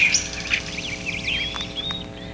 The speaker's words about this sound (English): I hear birds.